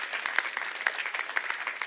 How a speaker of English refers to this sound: Come on, if you're going to clap, might as well make it a good clap.